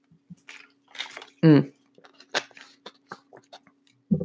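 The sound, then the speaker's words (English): Wet mouth sounds of someone drinking water from a bottle: soft sips and swallows, small clicks and squishes, with a loud voiced gulp or sigh partway through. “Talking is really thirsty work, y'all.”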